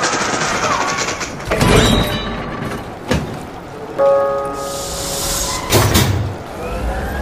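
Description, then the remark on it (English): The metal ceiling of a moving train being cut through overhead by a woman: a steady rumbling clatter broken by sharp metallic bangs, then a loud, high whining grind before a final crash. No one speaks. “She's cutting through the ceiling! Everybody off the train!”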